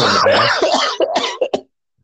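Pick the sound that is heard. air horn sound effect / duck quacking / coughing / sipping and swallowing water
coughing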